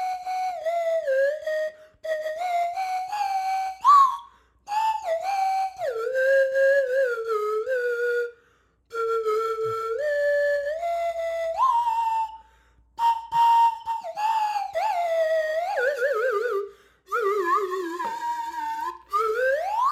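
A slide whistle plays a wavering tune, its pitch gliding up and down between held notes in short phrases with brief pauses, loud with no voices.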